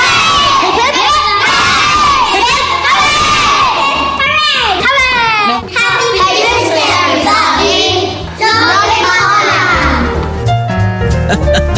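A crowd of children loudly shouting three cheers for Santa, each high-pitched, excited 'hooray' swelling in turn and separated by short breaths, with overlapping voices throughout.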